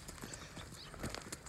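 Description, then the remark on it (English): Hooves clip-clop in a quick, uneven patter of soft knocks as a couple of the neighbor's horses walk along on firm ground, with faint outdoor background noise and no talking. “Looks like we're being joined over here by a couple of the neighbor's horses.”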